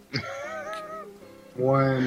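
A cat meows twice: a drawn-out, wavering call, then a brief pause before a louder second meow. Both are clear, with no talking over them.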